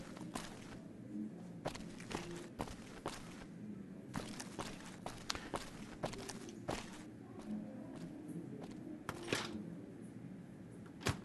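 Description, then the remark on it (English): Footsteps tromp around a suite in an irregular rhythm, each step a sharp, clattering thump over a low murmur of background noise, with no talking. “Just tromping around his room here.”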